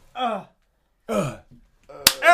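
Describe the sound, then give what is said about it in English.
A single sharp hand slap cracks out near the end, loud, after a couple of short voiced vocal sounds, with more voice continuing right after it. “I'm gonna slap him for you.”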